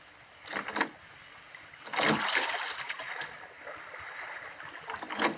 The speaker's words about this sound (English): I wish he'd watch out where he's rowing.